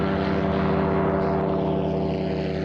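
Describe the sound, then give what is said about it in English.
A steady, droning propeller engine of a remotely controlled military drone aircraft hums continuously with strong low tonal bands, loud and unbroken with no voices. “In fact, let's take a look at how these killer drones are controlled around the world from anywhere in the world and the stress it's creating on soldiers.”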